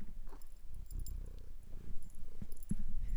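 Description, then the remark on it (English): A domestic cat, Alfie, purring steadily, a continuous low rumbling drone with a few soft rustles and clicks on top and no talking. “Here at Queer Podcast HQ, we have another mascot, and that is Alfie Cat.”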